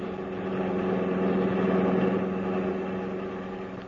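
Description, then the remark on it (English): A car engine runs steadily, a continuous low droning hum with a slight swell in the middle and no voices. “Stop this car.”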